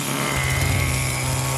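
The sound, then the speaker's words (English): A chainsaw engine runs loud, a steady, harsh buzzing drone that holds constant for the whole moment, with no voices over it. “Since we're getting like, he flips the shotgun on his back, little whatever magnetic holder, whatever it's got, and cranks out his chainsaw.”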